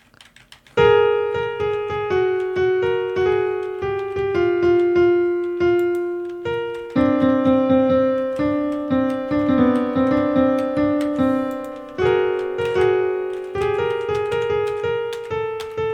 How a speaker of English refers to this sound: But if I just went to, like, a keyboard internet thing, let's see. Virtual piano. Here we go.